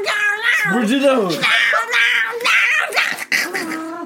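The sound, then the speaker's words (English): A cat yowls and meows loudly in a continuous run of drawn-out, wavering cries that rise and fall in pitch, with little pause between them. “Protect me, kitty cat. You need to calm down.”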